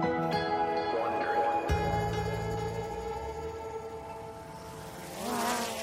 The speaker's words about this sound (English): A small drone is flying over a sunny Brooklyn street. The middle of the day in New York City is usually loud and bustling, but not these days. In this new normal we're living in, Brooklyn is eerily quiet.